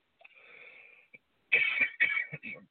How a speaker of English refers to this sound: I'm having a cough right now.